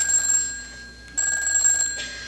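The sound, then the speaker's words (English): A telephone rings in two electronic bursts separated by a brief pause, the bright tone steady and fairly loud with no voices present. “Hello, Jimenez is speaking, running to your phone.”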